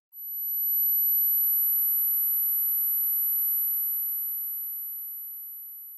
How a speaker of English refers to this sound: Tinnitus, T-I-N-N-I-T-U-S, is a medical condition where you hear ringing or buzzing in your ears, like...